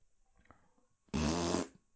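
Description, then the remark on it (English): A single loud, buzzy fart lasting about half a second, rich in low tones, following a stretch of faint rustling and near silence. “Need a fart too?”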